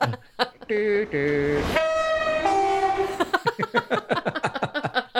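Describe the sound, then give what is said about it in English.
A train horn sounds in several long, loud blasts as a train rumbles by, followed by people talking over the fading noise. “100-ton train comes down, yeah.”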